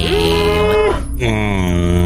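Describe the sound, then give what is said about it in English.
A young cow moos loudly, two drawn-out, low, droning calls separated by a brief pause, with no talking. “I have spotted a young cow.”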